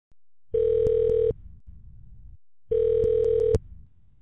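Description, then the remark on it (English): Two buzzing ringback tones from an outgoing phone call, each lasting under a second with a pause between, heard clearly through a phone line with faint line hiss in the gaps. “So I gave her a call a few days ago, and here's our phone conversation.”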